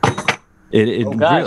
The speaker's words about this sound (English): That's why, didn't you hear someone just drop something? Sounded like someone dropped a watch in a shot glass. I'm good at sound mystery. That is exactly what it sounded like.